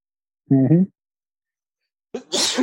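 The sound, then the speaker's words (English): A loud sneeze: a short voiced intake, a pause, then a sharp, hissy burst with no talking around it. “Bless you.”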